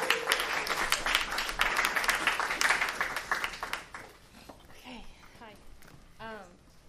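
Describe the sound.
A crowd applauds loudly for about four seconds as a speaker is invited up to speak, dense clapping, then it quickly dies down, leaving a few scattered voices and a short whoop.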